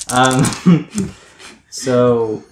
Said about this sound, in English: Those are the dice. Yeah. They're metal. They're very Wild. I got very fancy metal dice just for you guys.